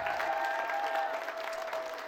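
A crowd claps steadily throughout, a dense, even wash of many hands at a constant moderate level with no voices rising above it.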